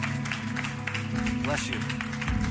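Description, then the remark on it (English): An audience claps steadily for a man coming forward to be prayed with, a dense wash of hand claps with voices talking over it and a low hum beneath. “We're gonna clap with you.”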